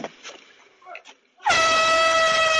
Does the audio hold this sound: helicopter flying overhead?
no